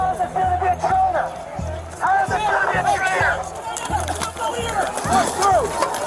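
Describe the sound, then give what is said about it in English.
Recorded on the body cameras of Metropolitan Police Department officers in riot gear pushing their way toward the barricade on the lower plaza where Joe Biden's inauguration was to take place: a hostile crowd shouts and yells over one another in a loud, continuous roar, with rhythmic low thumps pulsing steadily underneath throughout. “They push their way through a hostile crowd.”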